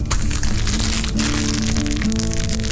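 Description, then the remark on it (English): Small hard dice clatter and rattle together inside a bag of unopened, brand-new dice, a dense, steady stream of crisp clicks lasting a few seconds over a low background hum, with no voices. “That is a bag of unopened, brand new dice.”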